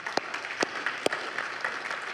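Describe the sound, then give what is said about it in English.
An audience applauding for Jesus, a steady wash of many hands clapping together, with a few sharper claps standing out. No one speaks. “You know, you can clap for Jesus.”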